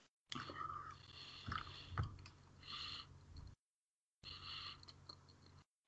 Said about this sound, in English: All right. I think I finally chewed all the little bits up. I hate almonds. I like almonds. I don't like all the other stuff. I like peanuts and almonds. I don't like anything else.